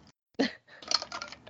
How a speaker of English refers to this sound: You might hear ice clinking in a glass.